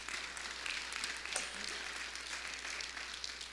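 A church audience in Ardmore applauds together as a clap offering for one of its members, a steady wash of many hands clapping that holds evenly throughout, with no voices over it.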